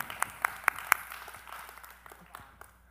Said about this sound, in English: You know what I think is funny is that we're golf clapping miracles. Oh, that's cool.